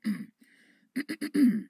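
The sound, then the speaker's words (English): A person clears their throat: one rough rasp, a brief quieter rumble, then a quick series of three short guttural bursts ending in a longer, louder scrape. “Let me clear my throat.”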